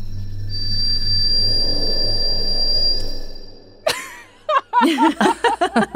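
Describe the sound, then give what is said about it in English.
A mouse that has just eaten a scorpion howls into the sky to claim its territory, a thin, steady, high-pitched whistling howl lasting a couple of seconds over a low hum, followed by a sharp click and then people chuckling and talking. “That was his tiny scream. Yeah, they howl.”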